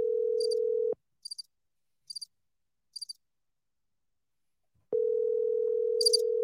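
telephone dial tone

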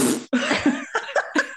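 cough

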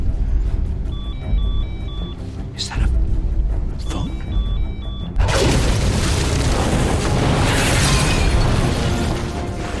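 bomb explosion

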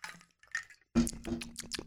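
drinking

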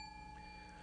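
bell ringing

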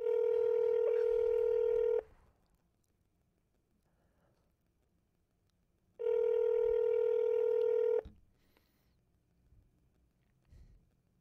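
telephone dialing tones

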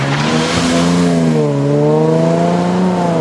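car engine revving

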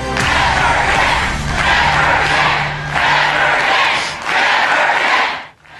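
crowd reacting

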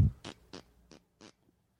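fart into the microphone

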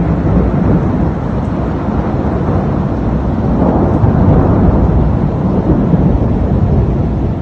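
rolling thunder

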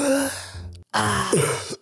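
small cough

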